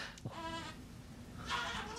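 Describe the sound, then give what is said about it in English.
A baby gives two short, wavering bleats that mimic a billy goat, the second a bit louder, heard somewhat in the background with no one talking. “Do you hear my baby making a billy goat sound in the background, by the way?”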